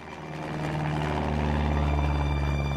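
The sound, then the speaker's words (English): A loud, steady drone from inside a Cessna propeller plane in flight carrying skydivers, with a low humming engine tone from the spinning propellers and a constant rush of wind into the fuselage, swelling slightly at the start and then holding even. “We'll start, as one does, inside a Cessna.”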